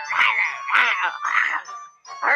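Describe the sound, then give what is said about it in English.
A human voice growls like a beast in four rough, drawn-out bursts with short breaks between them, fairly loud, with no clear words. “Heard and growled the beast.”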